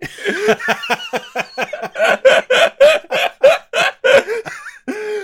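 A chicken clucks in a quick, steady series of about a dozen sharp bursts, growing louder midway, ending in a slightly longer drawn-out squawk, with no talking.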